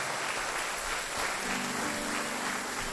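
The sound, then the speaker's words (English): A large crowd claps together in praise of Jesus, a dense, steady wash of applause that holds for the whole stretch, with a low sustained musical tone joining beneath it partway through. “Give Jesus a mighty clap of praise.”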